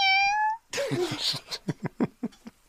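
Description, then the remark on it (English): A person imitates a cat, starting with a thin high tone and breaking into a loud, strained, drawn-out meow, followed by a quick run of short breathy bursts like giggles. “I can make a cat sound.”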